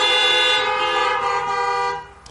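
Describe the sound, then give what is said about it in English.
Car horns blare together in a sustained, loud honking chorus as people honk a hallelujah in response to a preacher during a church service. Several horns overlap, holding steady for about two seconds before fading out. “If you believe that, honk a hallelujah.”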